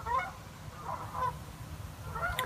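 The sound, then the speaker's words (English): Birds call with honking, goose-like cries in a few scattered bursts over a steady low rumble of background noise, with no one talking. “Get the birds, let me see them.”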